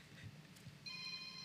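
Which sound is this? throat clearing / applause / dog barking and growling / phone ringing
phone ringing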